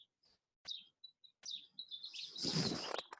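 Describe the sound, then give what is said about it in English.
Birds chirping outdoors at night, a few short high tweets at first, then a denser burst of overlapping calls and chatter building toward the end, clear with no talking. “You can hear our birds tonight, maybe.”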